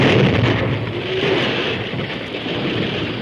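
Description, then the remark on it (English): A loud blasting-powder explosion, the first of the charges set off, a deep, heavy roar that hits at once and rumbles on steadily for a few seconds, booming, with no voices. “Then, at a word from the masked man, the first explosion was set off.”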